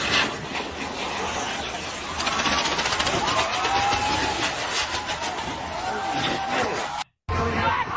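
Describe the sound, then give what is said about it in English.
A big spinning firework, set off by people, sputters and crackles in a rapid, continuous rattle with faint whistling, loud, over the noisy murmur and shouts of a crowd before cutting off abruptly; it gets away from them and ends up in the crowd. “So they light off this big-ass firework thing. It's like one of those ones that spin. Well, it gets away from them.”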